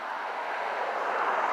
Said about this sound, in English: I got to get away from this airport and all this noise, man. And I ain't talking about the squirrels, I'm talking about that.